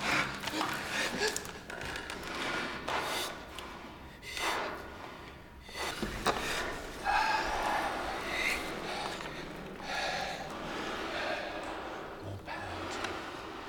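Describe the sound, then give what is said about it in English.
Several voices imitate a pair of lungs in ragged, broken-up sleepy breathing that is going wrong, bigger, bolder and dirtier, with loud overlapping snorts, huffs and gasps that come in uneven bursts and keep going without a pause. “But as it starts to go wrong, break up the breathing. Bigger, bolder, and dirtier.”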